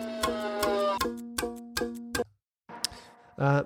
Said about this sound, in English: They've chosen the things that keep the pulse, keep the pace, the clocks and the ticking violins.